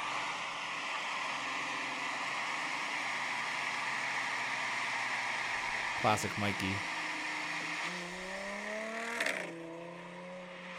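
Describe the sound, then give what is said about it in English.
An Audi S5 with an automatic transmission and an aftermarket exhaust of mandrel-bent 304A stainless steel drones steadily with a breathy, hissy roar, then a sharp pop and a rising rev build near the end as someone briefly speaks over it. “this is what Mikey's S5 used to sound like”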